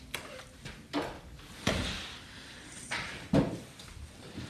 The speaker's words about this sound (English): would you do me a favor and close that door, please? Thank you.